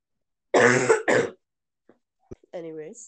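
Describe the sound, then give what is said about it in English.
Two loud, harsh coughs in quick succession from a person recovering from an illness, then a pause with a couple of faint clicks before a short voiced throat-clearing sound. “For the viewers, I am still recovering from a sickness, an illness that I had last week, so I will be violently coughing sometimes.”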